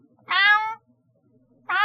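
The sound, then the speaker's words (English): A kitten meows twice, fairly loud, with a bright high-pitched cry followed by a pause and a second meow that cuts off at the end. “Yes, well, microphone is not picking up the kitten right now. Make noises into the microphone.”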